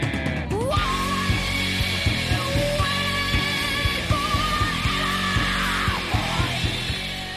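A loud rock chorus with a woman's bellowed, strained vocal holding long notes over dense, driving drums and distorted guitars, sustained at full volume throughout.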